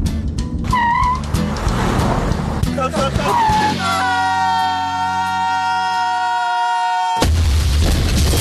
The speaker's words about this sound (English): Took the shortcut, huh? Have a car wreck?